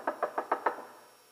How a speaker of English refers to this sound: goes to Sarah's house, knocks on her door